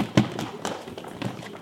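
Three fairly sharp knocks on a door, unevenly spaced, each a brief hollow thud with no voices around them.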